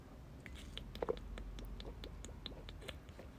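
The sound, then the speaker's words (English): Quiet mouth sounds of someone sipping water: soft wet clicks and small slurps with a brief swallow-like burst near the middle, no talking. “I'm gonna take another sip of my water.”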